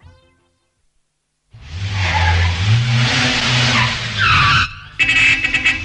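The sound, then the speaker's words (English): A car engine roars and revs loudly, tires screeching in a long skid, then the engine cuts briefly before another harsh burst of squealing and revving. “what a nice car the man have.”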